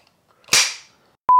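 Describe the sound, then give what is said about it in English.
A single sharp, loud clack of a clapper snapping shut to sync a recording, with a brief ringing tail, then silence before a steady high-pitched beep tone starts at the very end. “What would you clap if it wasn't?”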